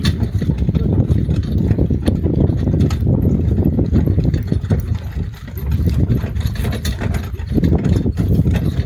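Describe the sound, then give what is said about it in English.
Horses trot steadily while pulling a carriage in the town of Windsor, about 15 miles outside Aiken, their hoof clops blending into a continuous rumble of wheels and movement, with no talking. “Oh, and now we're trotting, so you're going to hear that a little bit. You definitely hear the horses now.”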